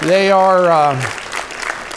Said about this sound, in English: Aren't you thankful for our music department and the team? Amen. Yeah, the rest of you ought to clap too. Let's all clap, amen.